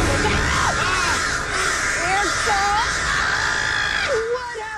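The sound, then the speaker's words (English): An actress, Catherine O'Hare, imitates crow caws while playing someone on a TV show who starts turning into crows: a loud run of harsh, rasping caws with sliding pitch, repeated several times over a steady noisy background. “She's an actress, and so it's just funny seeing her, Catherine O'Hare, just start to do this crow voice and stuff.”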